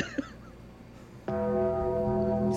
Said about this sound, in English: So, oh no! Bells!